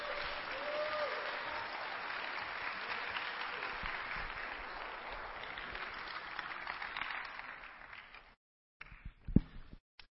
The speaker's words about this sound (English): How about another round of applause for the Kingdom Kids?